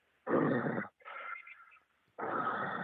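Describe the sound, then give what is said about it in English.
A voice imitates heavy, labored breathing: three low, rasping breaths, a harsh inhale, a thinner strained sound, then another gravelly breath, like something struggling to take deep breaths rather than a growl. “Like just really low, like wasn't like a growl, but it was like something struggling to take deep breaths.”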